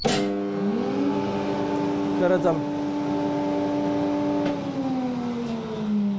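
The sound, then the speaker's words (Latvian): A fully reconstructed ventilation filtration unit's fan, with filters that stop chemical substances and radiation, spins up with a rising whine, then holds a steady, loud mechanical hum with stacked tones, with brief rattles and a slight drop in pitch near the end. “Šeit mums ir rekonstruēta arī pilnībā ventilācijas filtrācijas iekārta. Vajadzētu viņu arī darboties.”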